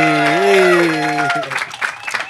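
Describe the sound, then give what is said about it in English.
A loud, drawn-out cheering shout rings out, then gives way to a patter of clapping and murmuring from a small group of people as NFL player T.Y. Hilton walks into the room. “We've generated a little bit of a crowd here. That's what happens when T.Y. Hilton walks into the room.”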